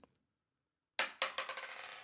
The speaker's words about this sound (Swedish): Här är då en tärningsburk i konstläder. Sådär med filt på insidan. Med filt klädd på insidan. Och så slår vi.